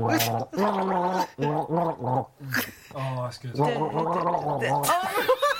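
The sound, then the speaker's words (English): Someone gargles water while humming a recognizable song melody for others to guess, producing bubbly, wavering pitched tones in phrases with brief pauses, fairly loud, ending with a short breathy laugh. “Or you take a sip while it's going.”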